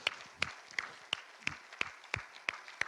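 A round of applause from a crowd for the people who came out to assist a woman: a dense wash of clapping with sharp, evenly spaced claps cutting through in a steady rhythm, about three per second, moderately loud, with no talking.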